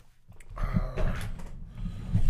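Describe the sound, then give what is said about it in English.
A drawer slides open with a scraping rumble, followed by papers rustling and shuffling as someone rummages through it looking for a paper, moderately loud with no talking. “Open up that drawer real quick.”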